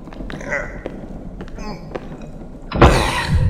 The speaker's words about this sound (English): Help me get that cabinet up against the door.